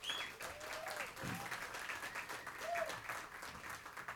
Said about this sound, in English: Give the band a big round of applause.